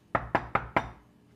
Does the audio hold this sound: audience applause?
no